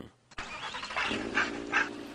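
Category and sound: animal, dog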